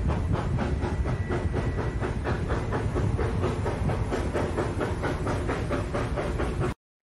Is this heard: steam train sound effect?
yes